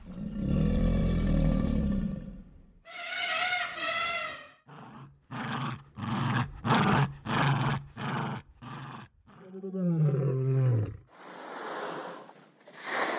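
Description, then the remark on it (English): A rapid-fire sequence of animal sounds gathered by a sound designer, with no talking: a deep lion roar, a burst of choppy Jack Russell terrier growls, a lower crocodile-like rumble, then a loud, hissing whale blowhole exhale. “So the sound designer mentioned a baby elephant, a Jack Russell terrier growl, a lion, a whale blowhole, like crocodiles.”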